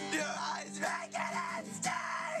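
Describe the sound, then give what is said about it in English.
A strained, screamed vocal in an acoustic Midwest emo song pushes hard enough to break into harsh, crackling mic-clipping distortion, loud, sustained across a few ragged shouted phrases with a gritty, overdriven edge. “He's clipping the mic so hard. That's not our equipment. That's him.”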